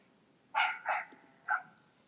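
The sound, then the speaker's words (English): Three sharp barks from the speaker's own dogs, two close together and then a third after a short pause, moderately loud against a quiet background with no one speaking. “I'm sorry if you can hear my dogs.”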